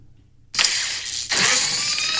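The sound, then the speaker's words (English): A crossguard lightsaber ignites abruptly out of silence, then a second loud burst of crackling, hissing exhaust venting from the sides kicks in and sustains, bright with no talking. “I love that second one, the exhaust going off on the side. Cross guard.”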